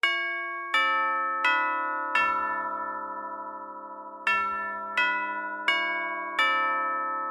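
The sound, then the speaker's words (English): A bright electronic doorbell chime at a studio door rings out a repeating melody of clear, ringing tones, each note struck sharply and left to sustain and fade, with no voices over it. “Oh, sounds like someone is at the studio door.”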